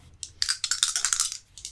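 Several small white dice clatter and rattle across a hard tabletop in a quick burst of sharp clicks, fairly loud, tapering off as they settle on a 5, with no talking.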